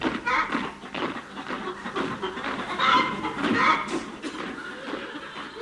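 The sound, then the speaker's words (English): A chicken clucks and squawks in a busy, agitated run of short, choppy calls, loud, lasting several seconds with no pause. “Chicken, jump, quick, march.”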